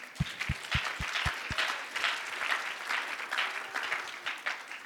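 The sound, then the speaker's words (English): An audience breaks into steady, full applause, clapping hands in thanks to a woman, that carries on for several seconds, opening with a quick run of six evenly spaced low thumps beneath the clapping. “Would someone clap hands Merci with her?”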